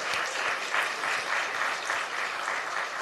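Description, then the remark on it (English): A crowd applauds the library team steadily, many hands clapping in a dense, even wash of sound at a moderate level, with no voices standing out. “Let's give them a round of applause, the library team.”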